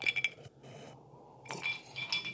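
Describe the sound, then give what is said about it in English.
Glasses clinking together in a toast, several bright ringing taps near the start and again toward the end, fairly quiet, with no talking. “Before we finish off, though, one more cheers to you”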